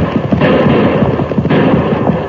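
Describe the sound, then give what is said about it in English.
A rapid, overlapping volley of gunshots fired at fleeing riders on horseback cracks continuously for a couple of seconds, loud and dense with sharp pops over a rumbling low end, with no voices. “those bullets were close.”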